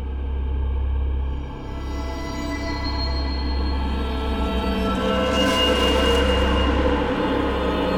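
train on rails

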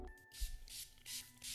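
spray bottle spraying

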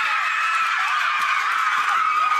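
crowd cheering wildly

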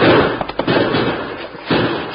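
gunshots

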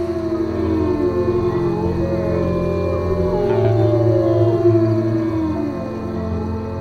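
wolves howling

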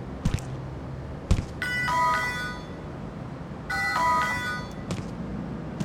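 door buzzer ringing

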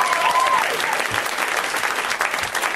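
audience clapping

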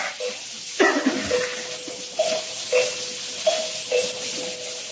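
bell being rung

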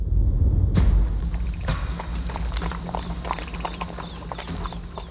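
horse hooves clip-clopping

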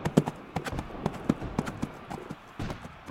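horse hooves riding away

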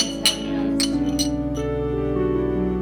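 glasses clinking

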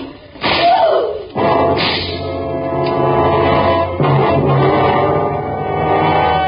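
whip lashing

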